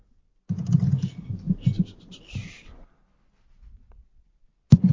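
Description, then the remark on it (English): A quick flurry of computer keyboard typing, fairly loud, clatters for about two seconds, then goes quiet before one sharp knock at the end. “Someone's typing. That'll be me.”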